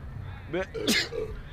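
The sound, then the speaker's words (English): A single sneeze: a short voiced intake followed by a sharp, breathy burst, heard over a low murmur of background noise. “Bless you.”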